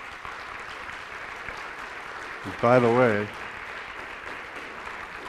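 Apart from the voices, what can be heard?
audience hand clapping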